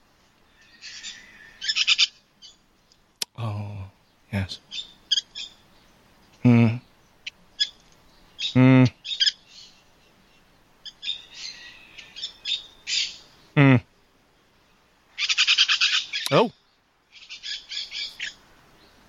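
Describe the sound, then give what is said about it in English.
Shrill, scratchy white-winged parakeet calls come in repeated loud bursts, with a few brief spoken interjections between them. “It is the white-winged parakeet.”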